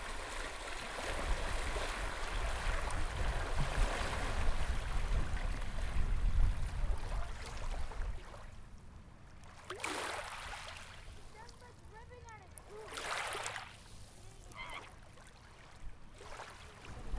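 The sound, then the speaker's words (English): Steady rushing water, like a stream or waves lapping, louder through the first half. It then settles into a quieter wash broken by a few brief splashy bursts, with faint voices in the background. “I was just taking a picture of the water.”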